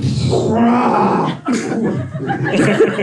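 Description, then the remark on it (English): A voice imitates a Martian fungaloid shrieking as it burns to death after a cigarette pack grenade bursts into flame in its mushroom-shaped head: a loud, raspy, strained howl that breaks off briefly around the midpoint, then resumes in rough, gurgling cries. “And with a gulp, they're blown with fiery Martian death, which sounds a little something like this.”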